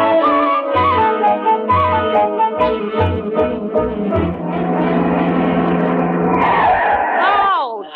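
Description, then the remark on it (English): Car brakes squeal loudly as the vehicle skids to a stop, the shrill whine bending and sliding near the end, with voices and other busy sounds filling the moments before. “To get them brakes fixed.”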